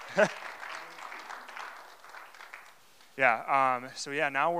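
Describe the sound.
A short stretch of soft, steady audience applause lasting about three seconds, given to thank a builder and his crew for framing out a shop and bar, followed by a person who starts talking loudly as the clapping fades.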